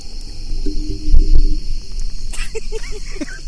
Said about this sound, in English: It sounds like an airplane flying over, but it's actually our fire. Yeah. So we're burning axe handles.